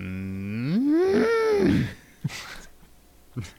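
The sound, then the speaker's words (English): A single long cow moo rises in pitch, swells loudly, then falls away over about two seconds, followed by a couple of faint, brief knocks in the quiet afterward. “We asked for technical, cow, in honor of this day, noises.”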